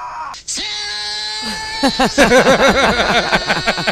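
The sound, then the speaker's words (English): A man yells and screams in loud, rising-and-falling bursts that grow more frantic toward the end, drowning out steady music playing underneath. “I love how his screams mute out the music.”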